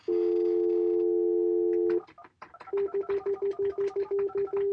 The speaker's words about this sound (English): Can you do dial tone?